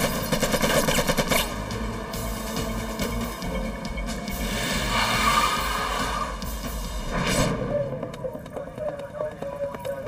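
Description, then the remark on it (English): Sustained machine gun fire rattles in dense, rapid bursts aimed along the side of a school bus, loud and harsh, with a constant roar underneath and a sharp final volley before the shooting trails off. “They fired right along the black band on a typical school bus, which is right about where the floor level is, so that even individuals that would be hiding on the floor to try and get cover would have taken rounds through the side of the bus.”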